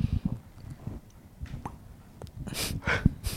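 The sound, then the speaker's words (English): A short, popping burp, brief and abrupt, with a couple of breathy bursts of noise and low rumbling around it; no one speaks. “I burped.”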